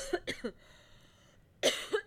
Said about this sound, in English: Sorry, now I'm coughing.